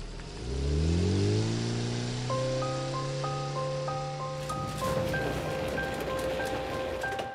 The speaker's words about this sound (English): I sat there looking out onto the falling rain as a small car disappeared into the distance.